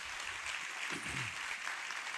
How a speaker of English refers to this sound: Let's give both of them a big round of applause.